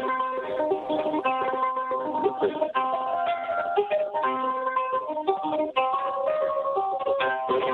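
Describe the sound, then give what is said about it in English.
An eight-string cigar box guitar plays a bright, twangy melody of overlapping plucked notes, with a steady, fairly loud run of tones and no voices over it. “Is that the cigar box? That's my cigar box.”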